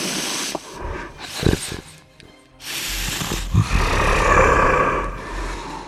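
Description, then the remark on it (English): A massive spectral dragon head sniffs the air in breathy, hissing bursts, then a long low rumbling exhale swells and sustains, with no talking over it. “you see this massive spectral dragon head come through the dragon room, look around, and strangely enough, start sniffing the air.”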